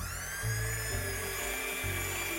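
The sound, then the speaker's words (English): A handheld blender whirs steadily as it mixes eggs added one at a time, a loud continuous motor whine with a slight shift in pitch as it churns, running for the whole stretch with no one talking. “And I've got a little handheld blender, and let's blend.”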